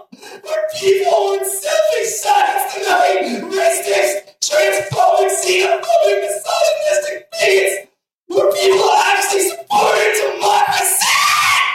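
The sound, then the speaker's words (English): A loud crowd yelping and shrieking in sustained bursts, many high voices overlapping, with a few brief pauses between waves of noise. “I love the yelping. Yes. The very shrieking.”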